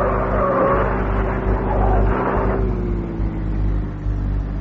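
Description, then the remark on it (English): A car engine roars steadily with hissing tire noise from a wet, slippery road, the pitch shifting slightly as it drives during a car chase just outside a city. No voices, and no clear impact is heard. “The roads are wet and slippery, and when we reach a bend just outside the city, the car I'm chasing doesn't make it.”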